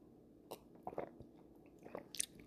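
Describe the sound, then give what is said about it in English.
Sips of Welch's Concord grape juice: a few short, wet slurping and swallowing noises with small clicks and gulps, fairly quiet, no talking. “Having myself a sip of a same old Concord, grape, Welch's, whatever.”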